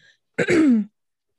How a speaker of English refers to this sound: Sorry, guys. I'm clearing my throat.